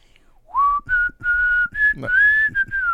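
whistled melody

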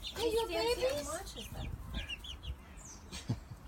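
chickens clucking

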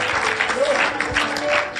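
audience clapping hands

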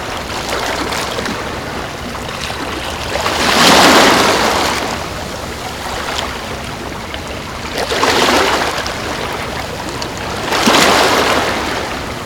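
rushing water

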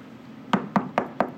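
knocking on a door

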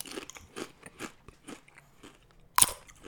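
crunching Doritos tortilla chips

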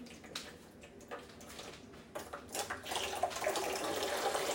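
water running

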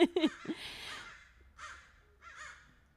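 crows cawing

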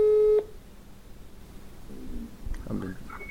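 telephone ringing tone

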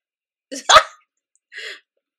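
dogs barking

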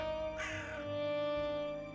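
crows cawing

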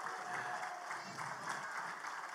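audience clapping

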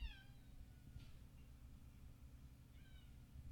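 cat meowing loudly

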